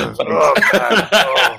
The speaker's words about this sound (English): You know, just as much as we're saying, thanks for the cough for illustrative purposes.